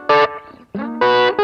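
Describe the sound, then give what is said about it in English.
Loud, bright electric guitar chord stabs with a short repeating slapback echo on each hit from a Carbon Copy delay pedal, a sliding note in the middle, and crisp, slightly gritty tone, with no voices. “And then I also have the carbon copy that I used to get that slap back sometimes.”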